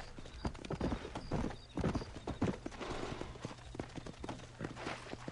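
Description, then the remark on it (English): Horse hooves clip-clop along a trail in a steady, repeating rhythm, each hoofbeat a sharp percussive knock over a low background rumble, with no voices. “Well, here, let's mount up and hit the trail.”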